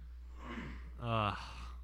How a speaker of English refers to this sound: My voice just started like cracking, so I had to clear my throat, if that's what you heard.